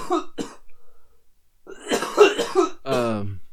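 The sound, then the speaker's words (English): A person who has been smoking from a pipe gives a couple of short coughs, a pause, then a harsh, raspy coughing fit trailing off into a strained, throaty groan. “The cough of glory.”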